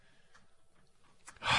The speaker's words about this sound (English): Wow. That was a pretty nasty growl, though, hey?